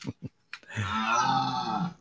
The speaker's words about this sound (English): That was a clip of the half human, half deer. So it sounded like a cow to me.